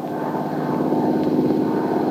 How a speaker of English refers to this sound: And now, as the plane nears its destination